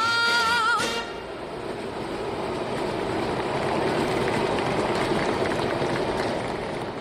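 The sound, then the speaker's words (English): A Metrorail train rumbles steadily along elevated tracks above a makeshift outdoor stage, a broad continuous roar with a brief high squeal at the start, filling the whole stretch at moderate loudness. “As the dancers danced and the music played to its second ending, joining the applause from the outdoor crowd was a Metrorail train running on its tracks above the makeshift stage.”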